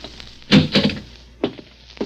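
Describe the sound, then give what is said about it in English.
The locked door of room 209 being unlocked with a key and pushed open: a pair of solid clunks, then sharper clicks of the latch a moment later, fairly loud, with no voices. “It's locked. I got some keys. It's an easy lock. Here we go, kid.”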